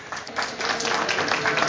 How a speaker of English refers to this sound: There's no applause necessary here.